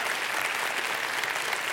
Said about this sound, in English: Yes, give them a round of applause.